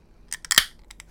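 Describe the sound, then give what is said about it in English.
A drink can cracks open: a few dry clicks, then a sharp pop with a short fizzy hiss trailing off, followed by two more quick clicks. Quiet, with no voices. “Hiss and pop.”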